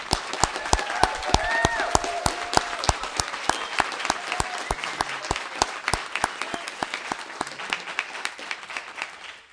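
An audience applauds for the choir's teacher, with dense, steady clapping that holds for several seconds, a sharp crackle of many hands with a few louder claps standing out, slowly thinning toward the end.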